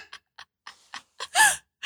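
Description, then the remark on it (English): A few short, breathy snuffles lead into a loud, honking nose blow with a wavering nasal tone, followed by the start of another forceful blow. “Everyone wants to hear you blow your nose, especially during COVID.”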